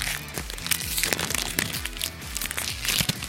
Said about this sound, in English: The crackle and tear of a freshly opened baseball card pack. For so many people, Topps Baseball Series 1 acts as the unofficial start of a new season